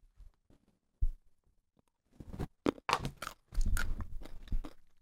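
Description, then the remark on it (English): Crunching on raw carrots: a couple of soft bites at first, then a loud, dense run of crisp crunches and chewing in the second half, with no talking. “Carrots? Yeah. You do this every time. I feel like most of them are carrots.”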